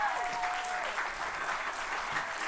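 Steady applause from a church audience at Life Changers Church for the speaker's mother-in-law, many hands clapping in a dense, continuous wash of crisp claps at an even, moderately loud level throughout.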